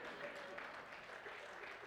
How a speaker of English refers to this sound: Yeah, you can clap, that's fine, go ahead.